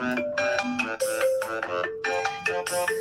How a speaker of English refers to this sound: I think when that alarm goes off every time, we take a commercial break.